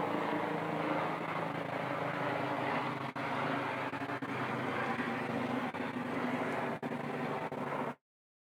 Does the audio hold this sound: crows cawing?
no